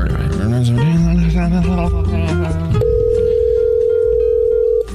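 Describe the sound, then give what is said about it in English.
A phone dials a number to call an applicant, with a quick run of stepped electronic tones, then a steady, loud ringing tone sounds for about two seconds as the call rings out. “Here's the phone number.”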